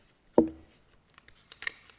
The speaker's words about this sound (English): But for new listeners, this is my colorful little mason jar filled with pieces of paper with all sorts of conversation topics, and we'll just draw a few and talk about them.